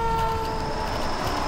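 A loud, steady siren-like horn blares from fire trucks of fire station number 9 near Candlestick as they roar out into the street, holding a constant pitch over a deep engine rumble, continuous with no voices.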